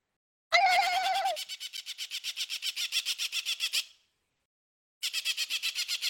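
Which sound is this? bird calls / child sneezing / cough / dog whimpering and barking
bird calls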